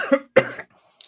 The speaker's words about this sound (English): Is it a dry cough? No. It's actually a very, very wet cough.